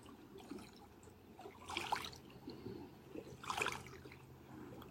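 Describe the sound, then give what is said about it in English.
Water trickles and burbles steadily over rocks, with two brighter splashing surges around the two- and four-second marks; no voices, just a continuous gentle flow. “Listening to the song of the water and rocks, the song of movement.”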